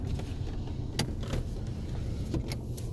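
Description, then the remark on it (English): A car's brand-new power window, replaced the day before by Alderfer Glass, opens with a steady low motor hum, punctuated by a few faint clicks and ticks, with no talking. “I did just get my window replaced yesterday, and it's the cleanest window, brand new. I'll even open it for you.”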